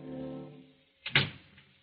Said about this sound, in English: And as the door opens, he slips the gun into his desk drawer. Janet closes the door and steps into the room.